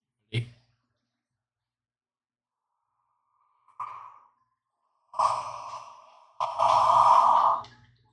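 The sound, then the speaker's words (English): A drawn-out, breathy yawn, fairly loud, rising into a long voiced exhale after a couple of short soft breaths and a quick click at the start. “You know, I'm yawning.”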